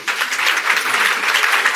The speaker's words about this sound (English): And finally, I want to recognize everyone in the CPS community, from my senior leadership team, which, please, I would ask my team members, please stand up. Listen, I want to applaud you.